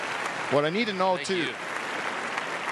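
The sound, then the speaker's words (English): Several people clap their hands steadily in a studio throughout, a dense patter of claps, while a voice briefly calls out over the applause near the middle. “What I need to know, too, it's the only sound that's short enough that can stop the clapping, right?”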